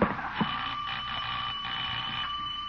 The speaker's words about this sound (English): Doorbell!